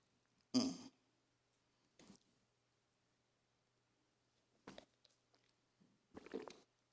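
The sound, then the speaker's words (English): A person sips a drink of water, with a loud slurp followed by a few quieter gulps and mouth noises spread over several seconds. No one speaks. “I'm going to take that drink of water again.”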